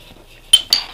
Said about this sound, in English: I'm just pouring myself some tea.